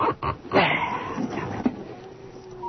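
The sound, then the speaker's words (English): Dogs bark and whimper in an agitated burst in the rain and darkness, with sharp yelps near the start and fainter whines trailing off, over a low background hiss. “What the hell's got into the dogs?”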